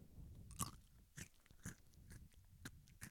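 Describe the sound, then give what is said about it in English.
A crisp crunch of a first bite, followed by several irregular crunchy chewing sounds at a steady pace, with no talking. “Chewing. How's that crunch?”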